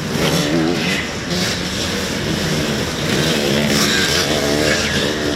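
A motorcycle engine revs loudly and continuously for about five seconds, its throaty pitch wavering up and down as the throttle changes, with no voices over it.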